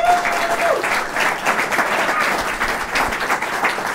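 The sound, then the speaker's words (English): An audience, both in-house and virtual, applauds the speakers at the close of a debate, steadily for about four seconds, a dense, even wash of many hands clapping at a consistent loud level, with a faint tone briefly audible early on. “But now would be the time to give that good round of virtual applause and in-house applause for the speakers.”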